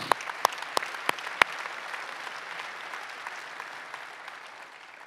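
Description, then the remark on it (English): A church audience breaks into applause, a dense wash of clapping with a few sharp, louder claps standing out at the start, then the applause gradually thins and fades over about five seconds. “Hey, let's clap for that. We can clap for that.”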